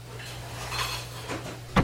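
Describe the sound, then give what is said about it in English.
Faint clatter of utensils and pans from chopping and dicing in a cruise ship kitchen over a steady low hum, ending in one sharper, louder clank near the close. “Hey, everybody, stop your chopping and dicing.”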